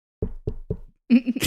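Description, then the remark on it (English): Three firm, evenly spaced knocks on a door, clear, followed by a brief burst of tonal, bright sound as someone comes in the door. “That's me coming in the door.”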